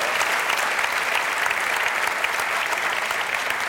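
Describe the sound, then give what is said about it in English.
Steady applause from an audience giving a big hand to the staff, a dense wash of many hands clapping at an even, sustained loudness with no voices standing out. “So please give a big hand, because without that, she would not have saved that penalty kick.”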